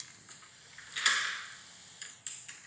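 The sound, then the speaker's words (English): A flip-flop footsteps sound effect: several flat, slapping footfalls of flip-flops, irregularly spaced, with one louder, drawn-out smack in the middle and sharper slaps toward the end; no voices. “She had footsteps and flip-flops.”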